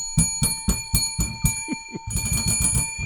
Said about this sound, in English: This bell reeks, dude. What's up with this fucking bell? All right. What's up with that bell?